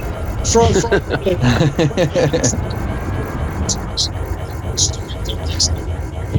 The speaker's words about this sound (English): Oh, I can hardly hear it. It's more a kind of pulsing metal sound. Like an engine kind of clunking, more than a kind of knocking. Let's go up this end because I could hear it really up at the shield end. It's quite loud.